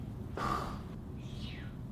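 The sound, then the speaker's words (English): A voice imitates snoring, faking sleep during a meeting: a single rough, nasal inhale with a buzzy tone, then a thin, falling whistle on the exhale, over a low steady background rumble. “Those are fake snores.”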